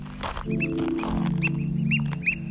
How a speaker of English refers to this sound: Those birds you hear are apparently called oyster catchers, and they're pretty annoying. They've been yelling all morning.